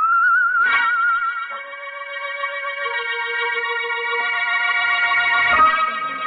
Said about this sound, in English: But we couldn't find the guy who whistled that queer tune.